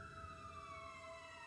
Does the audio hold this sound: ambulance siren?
yes